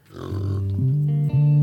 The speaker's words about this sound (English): Stop burping. It was you, not me.